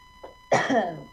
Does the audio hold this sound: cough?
yes